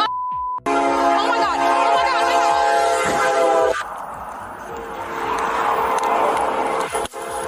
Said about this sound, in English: Oh my god. Move your car! These dumb fucks heard a train. That's what the horn is for.